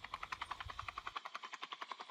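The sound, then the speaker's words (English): A helicopter's rotor beats in a rapid, steady chop, fairly quiet, with a low rumble underneath that drops away halfway through. The helicopter is bringing mercenaries to be dropped into the city. No one speaks. “They'll arrive via helicopter, each getting dropped into the city like a scene from Predator where Jesse Ventura and Carl Weathers are arm wrestling.”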